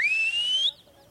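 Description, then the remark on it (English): A young boy of the Amadiba tribe on the wild coast of South Africa whistles at sunset to call in the cows: one long, high note that slides gently upward and holds steady before cutting off, followed by faint, brief chirping sounds. “As the sun starts to set, a young boy of the Amadiba tribe calls in the cows.”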